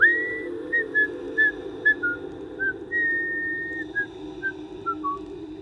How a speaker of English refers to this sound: At no point in time did he puff or complain, almost like he did not tire. He just kept digging and whistling the same short melody over and over.